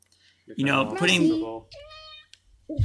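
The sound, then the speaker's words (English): A cat, Space Kitty, lets out a loud, drawn-out meow while messing with the microphone, followed by a quieter second cry, with a brief voice at the very end. “Space Kitty, I'm going to ask you not to mess with my microphone.”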